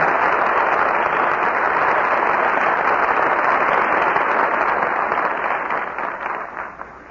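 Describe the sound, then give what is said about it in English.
Sustained audience applause for a curtain call by George Brent, Roddy McDowell and Rita Johnson after a Flicka performance, a dense, steady wash of clapping hands that stays loud throughout and begins to thin and fade in the last second or so, with no voices over it. “Curtain falls on my friend Flicker, and our very good friends George Brent, Roddy McDowell, and Rita Johnson answer your applause with a well-earned curtain call.”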